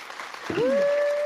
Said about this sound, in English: Shout out to Wiz. Okay, clap for him.